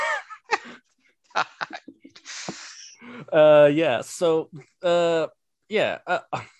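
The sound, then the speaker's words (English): A loud, exaggerated nasal sniff imitating Zizek's sniff rises among a string of wordless vocal noises and breathy snorts, with voiced grunts and hums around it. “I guess, obligatory Zizek sniff when talking about ideology there.”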